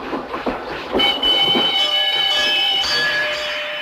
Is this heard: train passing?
yes